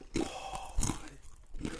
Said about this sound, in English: I can hear the crunch. I'm the only one getting playback at the moment, so I'm getting everything. I'm getting the crunch.